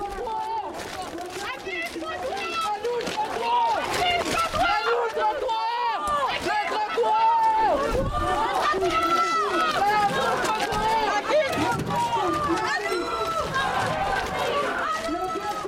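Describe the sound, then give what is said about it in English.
A large protest crowd celebrates in the street after the police officers lining the sidewalks left, with many overlapping voices shouting and cheering, steady and dense throughout, with bustling movement and footsteps beneath the din. “That then prompted some celebrations from the crowd.”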